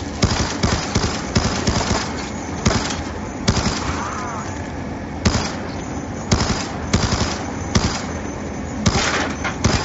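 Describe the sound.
Rapid bursts of video game machine gun fire, sharp cracking shots repeating in quick clusters with brief pauses between, loud and steady across the whole clip with some faint voices underneath.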